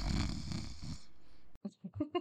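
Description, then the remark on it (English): A single raspy, drawn-out snore lasting about a second, fairly loud, seemingly voiced by a person imitating it, followed by a brief pause and then someone starting to talk. “lets out a soft snore.”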